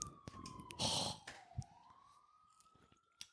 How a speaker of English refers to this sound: A bunch of big sirens at fucking 1 in the morning. I like when that happens in the neighborhood.